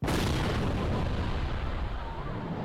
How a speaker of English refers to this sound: Not unlike those. I am never going to stop playing these explosions. Like one of these.